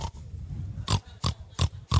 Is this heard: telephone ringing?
no